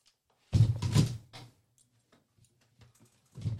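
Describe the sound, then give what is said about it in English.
Papers rustle and are set down in a few quick bursts, a cluster of crinkly handling noises followed by a pause and one more brief shuffle at the end. “Give me 1 second. I'll just drop my paper somewhere.”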